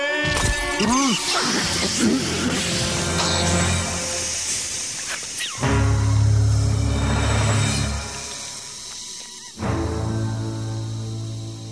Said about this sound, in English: He's gone. What do you mean, gone? Smashed his helmet.